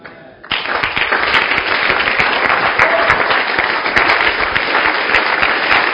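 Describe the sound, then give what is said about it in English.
A church audience breaks into sustained hand clapping after a brief quiet moment following a prayer, a dense, loud wash of many overlapping claps with crisp individual slaps poking through, continuing steadily throughout. “Let your hand clap be louder.”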